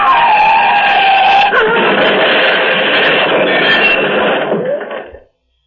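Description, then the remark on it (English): A car out of control skids with a loud tyre screech, a high whining squeal for about a second and a half, then a harsh, noisy roar and grinding crash as it rams head-on into a cylindrical bridge support, holding steady before cutting off abruptly. “The car has crushed against one of the cylindrical bridge supports, rammed against it head on.”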